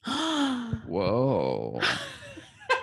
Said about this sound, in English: Whoa. I gasped.